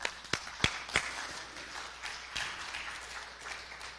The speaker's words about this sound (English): How many of you give them a round of applause here?